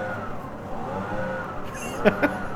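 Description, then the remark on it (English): A small engine drones steadily, like a lawnmower or leaf blower left running, its pitch wavering slightly, with two quick sharp knocks near the end. “Like, it sounds like they mowed the lawn and then they're blowing away the grass. Like, that sounds like a leaf blower.”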